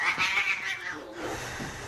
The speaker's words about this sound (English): What the hell's wrong with it? It's a cat. That's what's wrong with it.